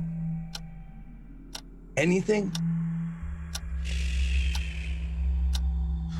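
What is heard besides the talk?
ticking clock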